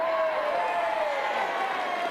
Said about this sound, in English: I want you to cheer, I want you to stamp, I want you to clap. Not for me, I'm going to give you a list of reasons why in a moment. I want you to make so much noise that Liverpool phones to complain.